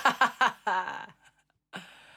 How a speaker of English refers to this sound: Mid-yawn, excuse me. I'm good. Sorry. Mid-yawn already.